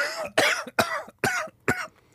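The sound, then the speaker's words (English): A person with a lingering cough after COVID coughs four times in a steady, evenly spaced series, each cough a sharp burst with brief pauses between. No one speaks. “Can you hit the cough button next time?”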